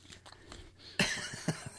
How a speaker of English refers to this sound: smell and eat at the same time. You're right. It is awkward. Yeah, you got to try to snort and chew.